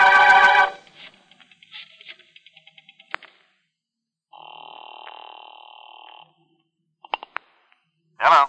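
A telephone being dialed, with a quick series of rotary clicks, followed by a steady buzzing ring tone on the line, then a few sharp clicks as the call connects. No one speaks.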